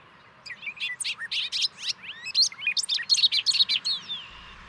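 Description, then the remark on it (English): A bobolink's bubbling song pours out in a rapid, tumbling run of metallic, warbling notes, sung clear for several seconds with no voices present. “listen closely right now and you will hear the sound of the bobolink or Robert of Lincoln”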